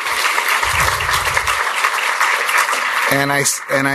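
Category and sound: crowd, audience applause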